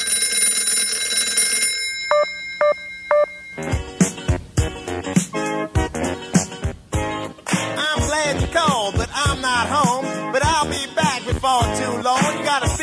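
A telephone rings in a short burst of three or four quick, bright electronic pulses, then gives way abruptly to a loud, busy stretch of recorded voices and music as it goes to the answering machine.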